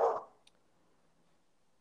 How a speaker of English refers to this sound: And, oh, my dog. He's very mad at the mailman. Let's see what his deal is.